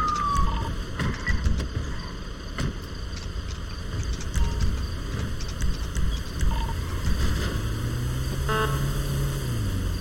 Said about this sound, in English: Can we get a siren check?